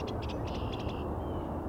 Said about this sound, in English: Blue jay.